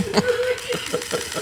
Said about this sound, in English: The clicks of the alarm grow faster, louder.